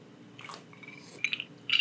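Quiet sipping of a Black Russian cocktail made with Kahlua from a cocktail glass, with soft wet mouth sounds and two short slurps near the end, no talking.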